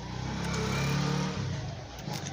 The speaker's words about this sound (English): You guys are hearing a motorbike riding by my house. I'm recording this in my room. It's a one room in Kukuo, a town in Tamale, which is the capital of Northern Region, which is a region in Ghana, Africa.